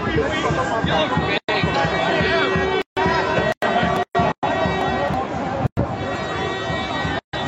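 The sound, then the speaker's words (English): A steady wash of chatter from an outdoor protest crowd, many overlapping voices, loud and continuous, with a faint tone humming underneath and several abrupt silent dropouts breaking the sound. “People down here today. Spirits still high in the crowd.”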